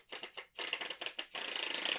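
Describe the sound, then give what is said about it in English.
Crisp, papery riffling of a card deck being shuffled: a few short separate bursts, then a fast, steady flutter of tiny clicks that runs to the end. No one speaks. “I was doing my card shuffle.”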